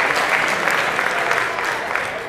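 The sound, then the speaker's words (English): A crowd applauds itself at a morning service, a dense, continuous wash of many hands clapping at an even loudness throughout, with no voices standing out above it. “Give yourselves a clap, that's great.”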